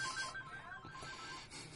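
A phone notification or ringtone sounds softly, a series of short, regular electronic beeps alternating between two pitches over a steady background hiss, with no one talking.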